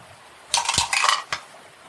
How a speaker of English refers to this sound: I'm going to use my lovely new dice that my sweet coworker Kate got for me. That's so pretty.